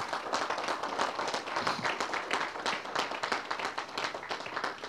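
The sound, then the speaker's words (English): A church audience claps steadily for several seconds in praise of God during a morning service, many hands overlapping into a dense, even wash of applause without pause. “Let's give God a hand clap of praise this morning, church.”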